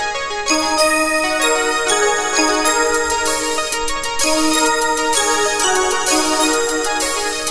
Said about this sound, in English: That is pretty cool. To like have the unconnected sort of like abstract little ding dong synth bells.